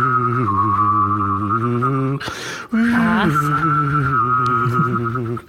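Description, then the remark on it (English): A person whistles and hums at the same time, imitating an eerie UFO sound: a wavering high whistle over a steady low hum, in two long stretches split by a short breathy pause. “I'm sorry to interject, but since you mentioned 1950s sci-fi, would you like to hear me whistle and hum at the same time to make a UFO sound?”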